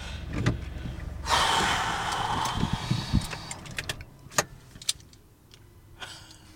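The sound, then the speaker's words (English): A car engine roars briefly and then cuts out as the automatic car stalls in a car park, followed by a few scattered clicks and knocks inside the vehicle. No one speaks. “The car stalled.”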